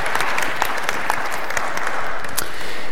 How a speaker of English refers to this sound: Yeah, amen. Good time to clap.